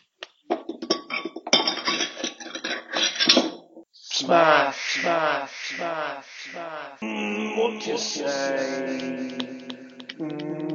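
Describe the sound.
A drinking glass holding a fruit shoot drink shatters with a sharp crash, followed by a few seconds of scattered clinking shards, then voices talk loudly over the rest.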